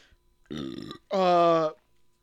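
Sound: burp into the microphone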